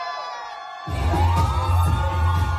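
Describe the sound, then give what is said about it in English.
A crowd of adults and children at a show erupts into loud, wild screaming and cheering after a brief quieter moment, as a young child performer tosses their jacket off. The roar is sustained, with whoops and yells rising above the din. “The young child in question tosses their jacket off, and the crowd screams wildly.”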